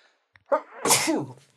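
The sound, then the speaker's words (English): A single loud sneeze: a quick sharp intake of breath, then a bright, noisy burst that trails off in about a second. No one speaks. “Or I'll sneeze, I guess.”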